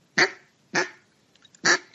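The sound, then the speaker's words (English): A person imitates a duck with three short, clipped clucks, fairly loud, spaced unevenly with a longer gap before the last, and nothing else in the background. “There's little clucks.”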